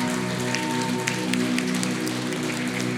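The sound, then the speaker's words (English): An audience applauds a little child at a child dedication in a steady, dense wash of clapping that holds for about three seconds, with a low sustained musical tone humming underneath. “Come on, let's give this little one a round of applause.”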